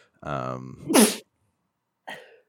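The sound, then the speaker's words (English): A loud sneeze: a drawn-in voiced breath building into a sharp, noisy burst, followed a moment later by a short, quieter vocal sound. “Bless you, ….”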